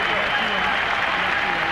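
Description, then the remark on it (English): A standing ovation from a huge arena crowd of 21,000 at the Palace of Auburn Hills: a dense, steady roar of clapping and cheering that holds at full strength throughout without pause. “And a long standing ovation by this crowd of 21,000 at the Palace of Auburn Hills.”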